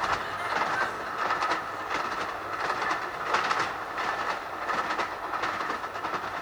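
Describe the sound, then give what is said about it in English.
A train rolls steadily along the rails on a cloudy day, wheels giving a repeating clickety-clack roughly every second over a continuous rumbling drone, heard from inside the carriage at a moderate, even level with no talking. “On the train.”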